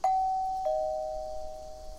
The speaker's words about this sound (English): Just as Jonathan was inquiring about the delayed response to his proper doorbell ringing